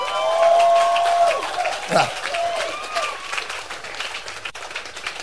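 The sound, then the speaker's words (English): An audience claps steadily in church, a dense crackle of many hands that holds for several seconds, with raised voices and a sustained shout over it at the start before it gradually thins. “Clap us to just us in the church.”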